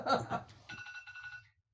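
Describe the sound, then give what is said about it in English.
A short burst of laughter or voice, then the speaker's phone rings with a bright, buzzy electronic tone for under a second before cutting off. The ring is moderately loud. “Whoops, sorry, my phone.”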